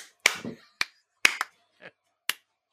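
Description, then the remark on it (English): Hands clap at a fly: five or six sharp, irregular smacks, one pair in quick succession, with a short soft murmur between them and silence otherwise. “There's a fly here. I'm not clapping you.”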